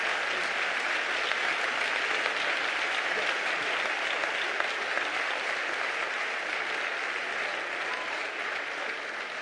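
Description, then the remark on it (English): A crowd applauds steadily, giving the Lord a hand clap, dense overlapping hand claps at a constant, fairly loud level for the whole stretch, with no voices standing out. “Come on, give the Lord a hand clap.”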